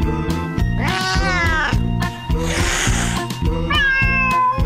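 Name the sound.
cat meowing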